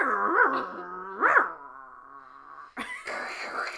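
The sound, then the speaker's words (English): A person, trying to recreate the old AOL dial-up internet sound, vocally imitates an exotic bird instead: two swooping, warbling calls and a sustained nasal tone, ending in a harsh, hissy, crackling burst of noise. “Sorry, I just made a bird sound, an exotic bird sound.”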